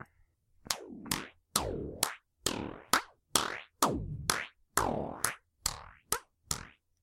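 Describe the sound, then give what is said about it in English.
A steady series of about a dozen hand claps processed with an audio app effect, each sharp snap trailing into a springy, twanging boing that swoops down and back up in pitch. No voices. “No, oh, and all I'm going to do is clap.”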